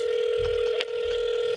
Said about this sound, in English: Phone ringing. Why the phone ringing like that? It's like three rings in one.